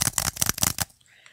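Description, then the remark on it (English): A quick flurry of clicky key presses as random keys are pressed on a small magic keyboard, around seven or eight taps in a fast, uneven rhythm, fairly loud, then cutting off into near silence. “I was just pressing random keys. I'm going to get my little magic keyboard. I was basically doing this.”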